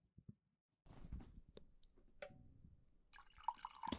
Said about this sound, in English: If you pour a drink into a glass, I'm going to do it on here.